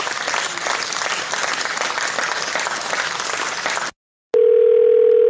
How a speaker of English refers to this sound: Hey, that's nice sound effect with the clapping.